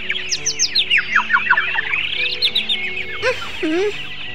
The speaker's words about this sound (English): If it's not the alarm clock, it's these birds. Why don't they leave me alone?